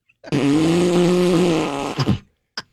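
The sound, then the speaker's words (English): A voice imitates a loud, long fart: a buzzing, low-pitched blare lasting nearly two seconds, ending in a couple of sputtering bursts and a brief final puff, with no talking. “And I'm like, I went out for a snoot and toot.”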